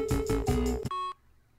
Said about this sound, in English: And we're making calls. The guy was foolish enough to leave a phone number with me. Ring, ring, ring, ring, ring, ring.